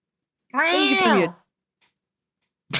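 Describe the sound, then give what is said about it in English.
A person imitates a cat's meow, one drawn-out rising and falling vocal call lasting under a second, loud, followed by silence and then the start of another voice. “Oh, they said meow.”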